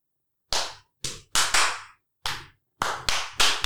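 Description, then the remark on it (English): About eight sharp hand claps at an uneven pace, some in quick pairs and others spaced apart, each crisp and bright with a short ringing tail, with no voices. “Can't wait to hear this clap in a with a lot of people.”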